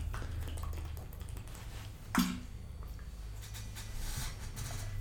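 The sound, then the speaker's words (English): Over a quiet, low background hum, someone takes a sip of water, with one soft gulp partway through and a brief sharp sound at the very end. No one speaks. “I had a sip of water and it was like bloop, bloop, bloop, bloop.”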